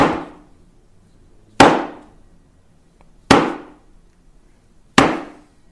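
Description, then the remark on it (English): A big, thick block of wood is struck four times at a slow, steady pace before a Zen sitting, each loud, sharp knock ringing briefly before fading, with quiet gaps between strikes and no voices. “It's a big block of wood. There's a big block of wood like this size, maybe a little bigger even, and it's thick.”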